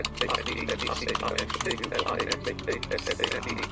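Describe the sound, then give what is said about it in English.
Rapid, steady clicking of fingers typing on a computer keyboard, continuous for a few seconds, with a low indistinct voice murmuring underneath. “The software converts all of the text on the computer screen into speech so that a blind person can independently manipulate the computer, word process, email process, internet research, just by using the keyboard.”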